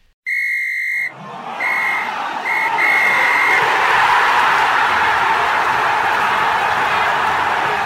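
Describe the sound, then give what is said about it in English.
A referee's full-time whistle blows one long, shrill blast followed by several shorter ones, loud, as a broad crowd roar swells and carries on underneath. “The full-time whistle has blown on episode 1 of the Footy Locker Pod.”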